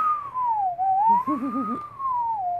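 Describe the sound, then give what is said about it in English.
A slide whistle plays a steady, fairly loud tone that glides smoothly down, back up, then down again, with a brief warbling lower tone wobbling underneath midway through. “Slide whistle, everybody.”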